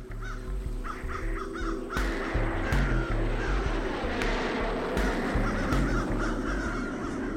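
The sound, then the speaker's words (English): Crows eating a dead seagull on a runway caw in a quick series of harsh calls, loudest early on, over a steady, heavy rumble of aircraft engines that fills the background throughout. “It's a seagull. The crows were eating it.”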